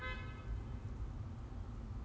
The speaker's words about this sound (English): Who's honking at me? Nobody honking at me.